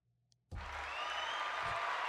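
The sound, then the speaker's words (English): After a brief quiet moment, loud applause played from a sound pad erupts suddenly and continues steadily, a dense crowd of clapping hands filling the space with no voices heard. “To applause.”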